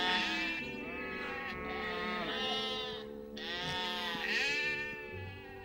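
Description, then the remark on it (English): Many sheep bleat at once, their wavering, overlapping calls forming a loud, continuous chorus, with brief dips between bursts and no talking. “Now, we don't ask sheep, dear. We tell them what to do.”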